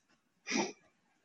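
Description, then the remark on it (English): A single quick sneeze bursts out of near silence, sharp and breathy with a hissing high edge, over in under half a second. “Bless you.”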